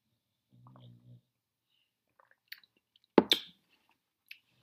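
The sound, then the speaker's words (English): A soft hum, then small wet mouth clicks and a couple of sharp slurping gulps as someone sips and swallows a beer from Black Stack Brewing of St. Paul, Minnesota, followed by one faint click in otherwise quiet surroundings. “So today's beer, let me take another sip.”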